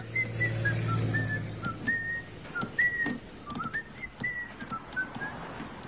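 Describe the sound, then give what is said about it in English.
A man on a bus whistles a bouncy, cheerful tune, clear melodic notes hopping up and down, with a low engine-like rumble early on and scattered light taps as he taps his hands on the seat in front of him. “He's tapping his hands on the seat in front of him and he's whistling like, yes!”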